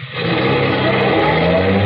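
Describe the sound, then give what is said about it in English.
A bus carrying voters revs up and pulls away, a steady loud rumble with a rising hum that builds quickly and holds, with no voices over it. “This is a nonpartisan, patriotic bus service. Here we go.”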